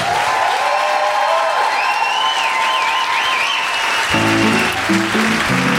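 Loud, sustained audience applause fills the whole stretch, dotted with high whistles and whoops, and music begins to come in under the clapping toward the end.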